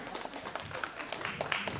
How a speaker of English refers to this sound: Oh, y'all got to clap better than that. This man's got a hard job.